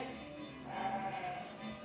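A sheep bleats in a wavering, drawn-out cry lasting most of the two seconds, moderately loud, with no voices and only a soft outdoor background.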